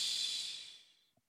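A person yawns with a long, airy exhale that gradually fades over about a second, followed by a tiny click. Fairly quiet, with no talking.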